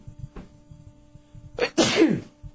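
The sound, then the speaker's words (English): A single sharp sneeze bursts out loudly, a quick intake followed by a broad explosive blast, with faint low background noise before it. “Bless you.”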